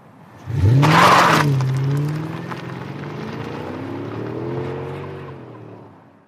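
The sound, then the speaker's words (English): An electric car accelerates hard, opening with a loud rushing burst before settling into a steady, rising motor whine that climbs in pitch, with no voices. “I'll see your Fiverr and I'll raise you a Fiverr and a go of your electric car.”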